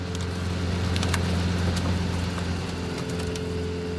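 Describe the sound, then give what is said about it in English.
A car-crusher loader with big steel tines runs in a scrapyard, its diesel engine droning steadily in a low rumbling hum with beeping and scattered sharp metallic clanks and rattles as it scoops up cars and places them on the crusher; no voices. “That beeping sound is coming from the loader, which is a machine outfitted with big steel tines like the prongs of a meat fork.”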